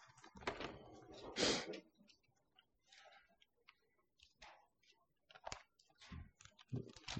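Pages rustle and flip as several Bibles are turned at once to Psalm 123, with two louder paper swishes early on and then scattered soft crinkles and taps.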